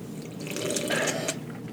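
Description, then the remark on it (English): Wet, slurping sips of hoppy beer from cans, taken by several people, run steadily for a couple of seconds: a soft liquid gurgle with bubbly hiss on top and no talking. “That's probably going to be the most disturbing sound to hear, with everyone sipping.”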